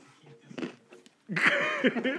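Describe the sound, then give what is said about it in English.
Crunchy food being bitten and chewed, with a few soft crunches at first, then a louder, sustained burst of crisp chewing noise. “I heard the shit out of that crunch. That shit was detailed.”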